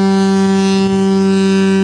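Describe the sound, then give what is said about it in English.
A foghorn sound effect played from a soundboard: one loud, sustained low horn blast with a rich, buzzy tone that holds steady and unbroken for almost two seconds, with no voices. “That apparently is a foghorn, but that, to me, sounded like a clown car gone wrong.”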